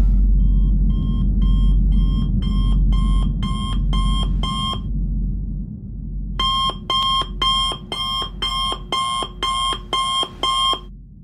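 A loud alarm clock rings at 6:30 in the morning, waking a sleeper, in rapid, evenly spaced electronic beeps, two bursts separated by a brief pause, over a constant low booming rumble. No one speaks.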